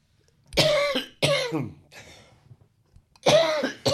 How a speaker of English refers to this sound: If you don't talk while I cough, then we can cut it out later.